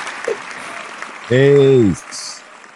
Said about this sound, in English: So the one and only …, applause please.